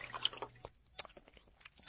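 Quiet, irregular splashing in a deep pool of salty tears: a handful of short, squishy sloshes scattered over a couple of seconds, with no one talking.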